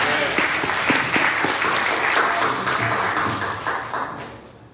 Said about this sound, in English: This is the former first lady of this house. Can y'all give her a round of applause?